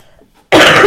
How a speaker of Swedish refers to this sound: Säger hon och hostar.